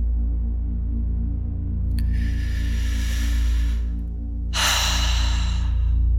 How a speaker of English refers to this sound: Continuing to focus on your breath. And remembering the breathing pattern of a deep inhale and exhale.